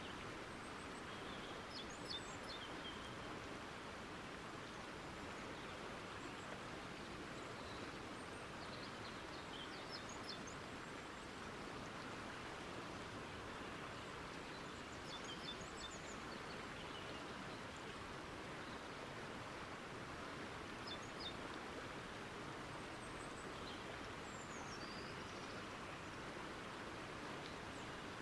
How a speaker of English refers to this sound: Now just imagine that you're sitting in the middle of a forest, looking at a large waterfall flowing down the mountain, listening to the birds in the forest, and the calming sound of the waterfall.